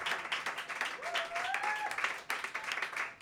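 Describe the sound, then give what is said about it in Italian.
Steady live applause from an audience, dense overlapping claps with a faint whistle rising briefly over the crowd noise. “E questo è l'applauso del volume.”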